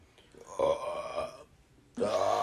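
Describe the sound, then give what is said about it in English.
Two loud, drawn-out burps: a croaky belch lasting nearly a second, a short pause, then a second rough belch that starts abruptly and continues to the end. “Burps.”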